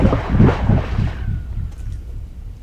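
A rock picked up off the ground and thrown into a well, just a little pipe sticking out of the ground, tumbles down, making a rapid series of hollow, booming knocks that echo and steadily fade, with a faint ringing tail as it reaches the water.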